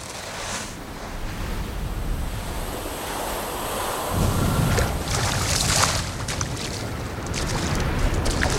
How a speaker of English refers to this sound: we hear the waves, we hear the birds, maybe other people sort of talking at the beach.